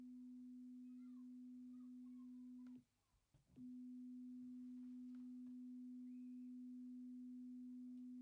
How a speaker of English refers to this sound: So let's test this theory, starting with the three tones again.